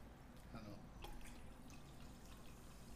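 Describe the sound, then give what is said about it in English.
Liquid pours and splashes into a cup, a steady trickle with small dripping plinks and brief clinks, fairly quiet, with no talking. “Pour it up at the top.”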